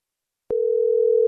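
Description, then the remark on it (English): A single steady ringing tone of an outgoing phone call sounds once after a short silence, a flat electronic hum lasting under a second, clear and fairly loud with a faint click at its start and end. “It obviously upset her daughter, so we're trying to get her daughter on the phone here.”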